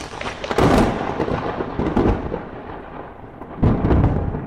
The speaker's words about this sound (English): Insert sound effect. There's a sound effect. There's a lightning bolt.